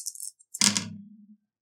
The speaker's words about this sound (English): I'm going to again roll. This time I have 4 dice. I need 2 successes.